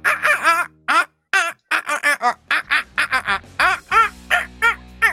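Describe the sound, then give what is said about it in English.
A person's voice squawks and gobbles in quick bursts, imitating bird calls while shouting out to the birds: a loud string of short clucking and warbling cries with brief gaps, resembling turkeys or ducks. “As I leave, I'm also going to shout out to the birds.”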